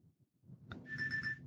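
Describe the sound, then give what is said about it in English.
A phone starts ringing with an incoming call partway in: a bright, high electronic tone that warbles in quick pulses, fairly loud over a low background rumble, just after a short click. “Oh, no, that's Spencer calling me.”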